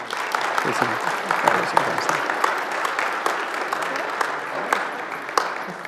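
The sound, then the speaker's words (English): Steady applause from an audience for a group of kids as they leave, dense overlapping claps sustained at an even level for the whole stretch, with a few sharper individual claps standing out and a faint murmur of voices underneath. “Just keep clapping until they leave.”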